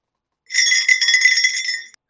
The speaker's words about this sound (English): Oh. Nice. Nice Foley work. I dug up a jingle bell just so I could do that.